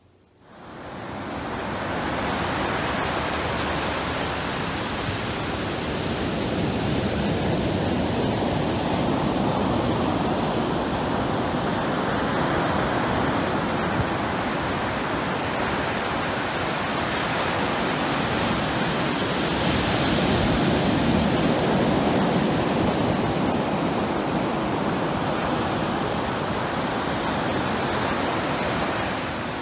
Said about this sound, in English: When I go to the ocean, I love to just sit and listen to the waves. Let's try listening together.